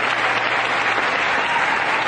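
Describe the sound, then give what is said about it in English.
Sustained applause from an audience, a dense, steady wash of many hands clapping at once with no pauses, loud and even throughout, with no voices standing out. “Clapping for him here.”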